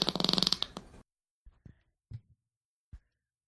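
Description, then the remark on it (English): A loud, buzzy fart sound effect played from a fart soundboard rattles for about a second, followed by a few soft, low thumps spaced apart in near silence. No one speaks. “Just got to make sure the fart board's going. Can you put a fart in case?”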